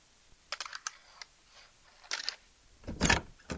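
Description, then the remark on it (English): A key rattles and clicks in the keyhole of a brass door knob in short bursts of metallic ticks, then a louder scraping clunk as the latch releases and a sturdy metal door painted bright red opens. No one speaks. “You insert the key into the brass door knob and it goes in easily. You turn the knob and the door opens.”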